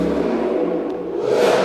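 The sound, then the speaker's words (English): A car engine revs and accelerates outside, a steady rumbling roar that swells and brightens toward the end. No one speaks. “I think that dude works at FedEx. I've seen that car before.”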